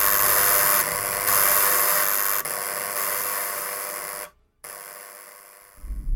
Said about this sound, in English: Arms over her face, hands covering her ears, trying to block out the sound of the buzzer.